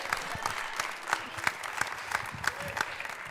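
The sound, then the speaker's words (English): During a Sunday morning church service, a crowd applauds people called up on stage, a steady dense patter of many hands clapping at once with a few sharper claps standing out, holding an even loudness throughout. “Give them a round of applause this morning.”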